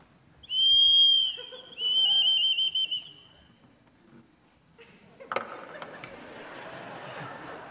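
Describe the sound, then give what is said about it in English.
Two loud, warbling whistle blasts mimic a bird's mating call, the second trilling and breaking off, followed by a burst of rustling, clattering noise. “This is a whistle.”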